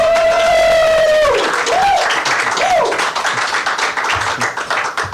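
An audience at the Halifax Pop Explosion applauds loudly and steadily for about five seconds as a band's members are welcomed, with a long, shrill whistle at the start followed by two shorter rising-and-falling whistles as the clapping continues.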